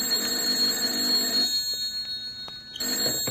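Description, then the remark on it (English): A telephone rings in a shrill, buzzing burst, pauses briefly, then starts ringing again, loud with no voices present. “Then my phone shrilled.”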